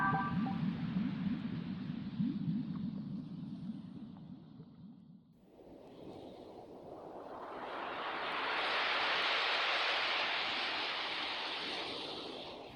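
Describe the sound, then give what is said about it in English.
Ocean surf rolls onto a sunny sandy beach, starting as a low, steady rumble, then a wave swells into a loud, hissing wash that slowly recedes. No one speaks. “Sun, sand, sea, surf. Everything you'd ever want here. Beautiful beach.”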